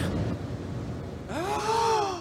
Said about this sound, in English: No way! The gasping.